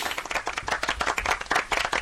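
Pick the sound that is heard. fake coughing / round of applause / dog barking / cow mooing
round of applause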